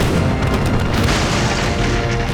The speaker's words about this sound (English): The broadside cannon fire shredded the merchant ship's sails and blasted apart the wooden hull.